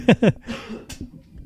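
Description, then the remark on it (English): Two loud, harsh coughs into a microphone in quick succession, followed by a softer, breathy rasp as the sound trails off. No one speaks. “I just coughed a little too loud into the microphone there.”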